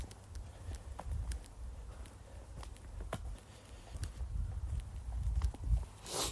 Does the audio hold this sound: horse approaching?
yes